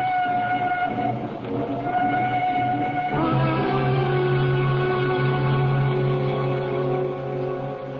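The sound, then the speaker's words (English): A train running on rails, a steady rumble layered with sustained metallic whining tones that drop and shift about midway through, continuous for the whole stretch with no voices. “There's a train which will bring me into Waterloo at 8.”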